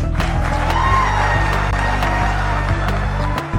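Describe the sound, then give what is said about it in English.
A crowd cheers steadily, mixed with scattered clapping and a few whoops, as Governor Ron DeSantis shakes a man's hand. The cheering is loud and continuous for a few seconds before easing slightly at the end. “In fact, he just went on to shake the guy's hand as the crowd cheered.”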